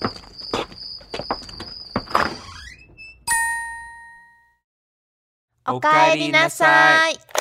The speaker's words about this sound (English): You just made it home and enter the front door.